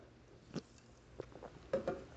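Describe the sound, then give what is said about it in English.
Quiet mouth sounds of someone sipping LaCroix sparkling water from a can: a few short wet slurps and swallows spaced out over a couple of seconds, the last pair the loudest, with no talking. “I just took another LaCroix sip.”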